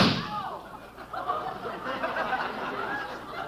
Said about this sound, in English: I just bought a new silencer for my gun. I think I'll put it on the gun and try it out.